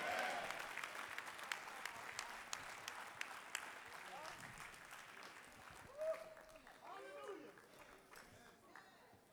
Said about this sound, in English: Every man in here, I charge you to be priest and prophet. Every man, clap your hands and say, amen. Amen. Amen.